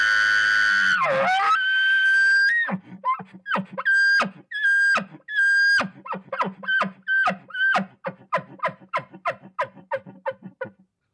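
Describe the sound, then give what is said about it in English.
A person imitates an angry bull elk: a long, high, wavering scream with a growl, then a loud run of rapid chuckling grunts that gradually quicken and fade. “So you can hear some chuckling at the end, and he's screaming, and he's growling, and he's, you know.”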